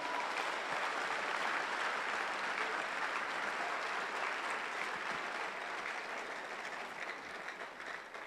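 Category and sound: crowd, audience clapping hands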